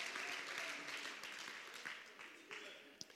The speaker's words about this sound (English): Clap your hands if you believe what I'm preaching. Oh, somebody give the Lord a mighty hand clap of praise.